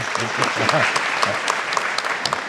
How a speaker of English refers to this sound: Well-deserved round of applause.